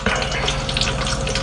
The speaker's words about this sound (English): I like how the oil started to crackle the second he bit into it.